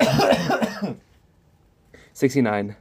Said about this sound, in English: Oh, let me cough and I'll tell you.